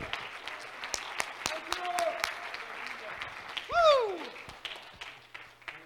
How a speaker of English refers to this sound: Come on, clap your hand to the Lord. He's worthy.